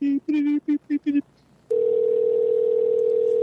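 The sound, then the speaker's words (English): A quick series of short electronic beeps, a brief silence, then a loud, steady telephone dial tone that hums continuously without a break until the end, as a caller whose call dropped is being redialed. “All right, let me get Jason back. We lost him.”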